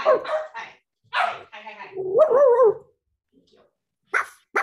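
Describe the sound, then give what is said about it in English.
A dog barks in short, sharp bursts, breaking into a high, wavering whine midway, then falls quiet before two more quick barks at the end. “Now you just meet my dog.”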